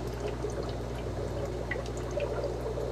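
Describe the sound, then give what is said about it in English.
Steady bubbling and gurgling of air pushed through water from opened air lines, a continuous watery churn with scattered small pops, moderately loud, with a low constant hum underneath. “So we got some airflow moving through there.”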